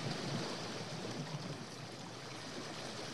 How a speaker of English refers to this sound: Oh, forest rain frogs. So you see, there are so many different background noises you can choose from.